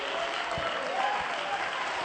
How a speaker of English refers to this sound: Oh, somebody ought to clap their hands unto the Lord.